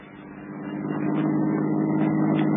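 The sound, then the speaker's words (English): A car engine hums steadily and grows louder as the vehicle pulls away, a continuous low rumble building over a couple of seconds with no voices. “Come on, let's join in the car.”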